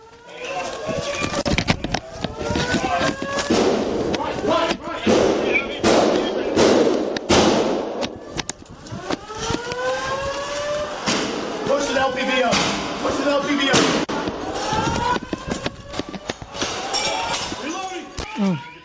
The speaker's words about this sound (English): Listen to what happens here as they charge up the stairs and you hear gunfire and there is no hesitation. They're moving directly toward the shooter.